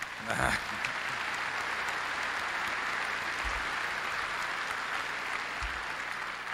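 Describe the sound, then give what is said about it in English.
Sustained crowd applause, a dense steady patter of many hands clapping at moderate volume, with a few louder bursts near the start and a constant wash throughout. “Some of our primary operations, yeah, you should give him a hand.”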